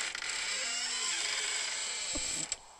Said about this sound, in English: Is that a door opening?